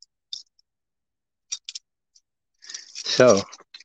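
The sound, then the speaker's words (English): Keys on a keychain holding many keys click and clink a few times, sharp, in scattered bursts as someone searches for one key; near the end a person says a word over more faint jingling. “Well, I am struggling to find that key. I have a lot of keys on my keychain.”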